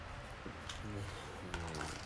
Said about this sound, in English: This is a fart.